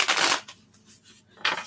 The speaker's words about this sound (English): Okay. I'm just shuffling my deck.